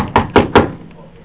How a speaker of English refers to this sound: So he crosses from downtown, and he walks across the Piestewa Parkway, goes up the stairs to the house, and knocks on the door.